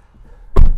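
A single heavy, muffled thunk as a car's normal rear passenger door swings shut when someone gets into the rear seat, preceded by a brief moment of quiet cabin rumble.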